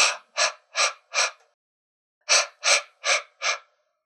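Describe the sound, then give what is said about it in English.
A voiceless, breathy 'h' exhale demonstrating the H sound, air coming out of the back of the throat with the voice off, repeated in two quick runs of four short airy puffs, separated by a pause of about a second, with no voicing in between. “H has no cognate, no partner, because it's just air coming out and you don't turn on your voice.”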